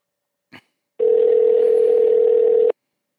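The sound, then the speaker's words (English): A brief click, then a steady, loud telephone dial tone hums for nearly two seconds before cutting off abruptly as a dropped call is redialed, with no one speaking. “I'm going to get him right back on the horn.”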